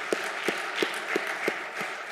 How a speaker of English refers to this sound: That's a good place to clap. I think that's a good place to clap.